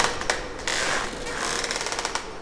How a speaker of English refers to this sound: Let's think about stopping for a second and put both of your arms all the way around one of the bamboo trees and try to feel it gently swaying. If you rest your ear against it, you'll really be able to hear it creaking in the wind.